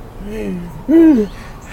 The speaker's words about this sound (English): Suddenly, they both hear the monster growling in the distance where they were fishing. This is bad, little bro.